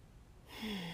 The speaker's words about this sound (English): So if you would just find a comfortable seat wherever you are, and you can either let your eyes close or just bring your gaze downward and just take three deep breaths, breathing in through your nose and out through your mouth.